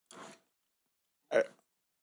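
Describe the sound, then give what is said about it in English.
Two short bursts of wet chewing or crunching, separated by about a second of silence, with no talking. “Every time I chew, it's moving my glasses with the mask, and I'm getting dizzy.”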